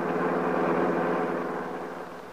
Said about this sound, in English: Now, in another car, Max is driving Paul Cromwell to an appointment with his attorney.